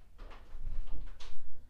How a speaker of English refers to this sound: Okay, we're good. We have a little one potty break. She's hitting the door. She's up. Oh, there she goes.